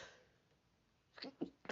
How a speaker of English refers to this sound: Ooh. Excuse me, y'all. Ooh, I got the sneezes.